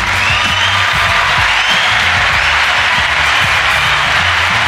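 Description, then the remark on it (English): A large crowd applauds steadily and loudly throughout, a dense wash of clapping with faint cheers and whoops mixed in, and a low rumbling undertone beneath it. “Applause to yourself.”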